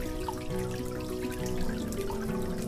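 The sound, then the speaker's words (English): A faucet drips steadily, each drop landing with a hollow, pitched plink in a quick repeating rhythm, fairly clear over a constant low background wash. “Do you have dripping faucets?”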